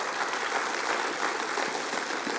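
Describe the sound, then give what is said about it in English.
An audience clapping steadily, a dense, even wash of many hands applauding at once, loud and sustained with no voices standing out. “And then maybe you should more clap him for that, but that's okay.”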